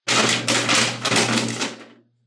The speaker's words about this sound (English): That man's typing with an empty ribbon.